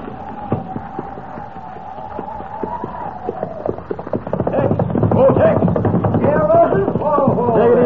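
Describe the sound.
Hooves of saddled horses clip-clop in a steady rhythm, joined by indistinct voices and a fuller, busier background through the second half.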